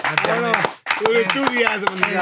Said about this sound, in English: Yeah, let's hear the clap. Let's hear the clap.